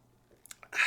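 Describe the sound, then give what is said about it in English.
A quick sip from a drink: a few small wet mouth clicks, then a short airy slurp at the end. Quiet, with no talking. “I'm going to go ahead and take a sip here real quick.”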